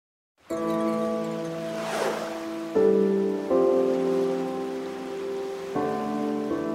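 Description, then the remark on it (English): Steady rain hisses over choppy river water in fog in a continuous wash of drops, joined by sustained low musical chords that shift a few times beneath it; no one speaks. “A state police marine boat with sonar spent the day in the rain, fog, and choppy water conditions searching for a missing kayaker.”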